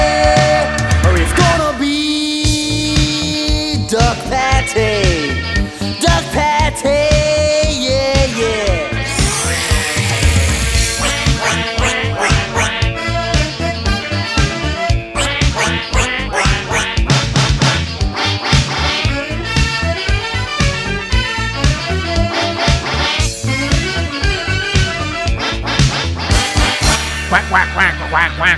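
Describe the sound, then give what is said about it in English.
A bouncy parody pop song about wanting a new duck plays loudly and continuously, with full band backing and what sound like comic quacking noises mixed into the music. “A parody, of course”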